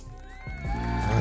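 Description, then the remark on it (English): A brief applause sound effect, played to welcome a guest: crowd cheers and whoops swell in over about a second, growing louder toward the end, with a steady ringing tone running underneath. “Hold on, let me get you some applause.”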